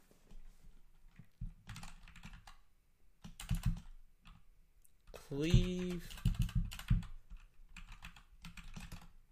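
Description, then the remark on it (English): A computer keyboard knocks and clatters against a desk several times, irregular hollow thumps, with a short burst of voice in the middle. “Hold on, let me move my keyboard because it's just slamming into my desk.”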